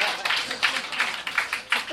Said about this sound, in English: Clap, motherfuckers!